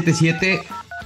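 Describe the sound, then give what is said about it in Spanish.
Short touch-tone dialing beeps sound over a voice, a couple of steady electronic tones arriving in quick succession near the end, moderately loud. “pon el teléfono, ¿no, güey?”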